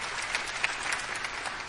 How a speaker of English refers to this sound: Yeah, awesome. You can clap for that. That's awesome.